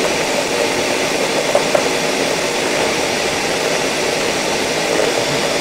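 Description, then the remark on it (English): A blender motor runs loud and steady, a dense roaring whir that holds at an even level for several seconds without obvious pauses. No voices come through over it. “How long am I pulsing? You gotta eye it off. I don't know. My blender is not like mine.”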